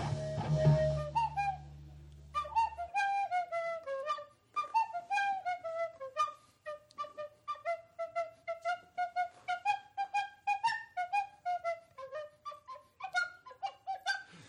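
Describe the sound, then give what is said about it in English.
A penny whistle plays the Gwent theme song from The Witcher, a lively tune of short, clear notes in quick rhythm, fairly loud, following a brief burst of low rumbling noise at the start. “I've been learning how to play the Gwent theme song on my penny whistle.”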